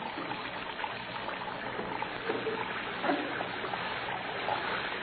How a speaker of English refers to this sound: Plug up your base and let the water run on the floor. Why? Yours is running plenty.